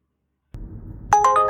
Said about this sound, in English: And at this point, this is when they start sending you offers, and you get this little chime.